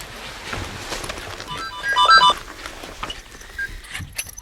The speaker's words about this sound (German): So, es läutet. Zu Zur gleichen Zeit saßen Gabi und Löschen immer noch im schwarzen Mercedes, als vorne am Fahrersitz das Telefon des Herrn im Anzug losschepperte.